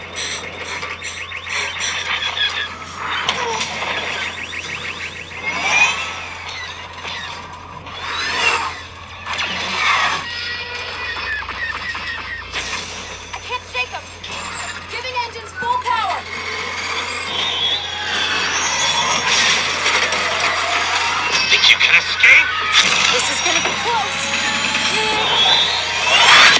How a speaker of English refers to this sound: Now let's actually show the trailer now.